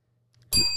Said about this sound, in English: If you're ringing the bell, it's the weather segment.